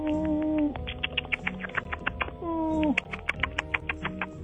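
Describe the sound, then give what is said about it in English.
A person imitates bird sounds, making low, sustained cooing tones that slide downward in pitch, broken up by quick, repeated clicky chirps in an uneven rhythm. “Sometimes I make chirping noises.”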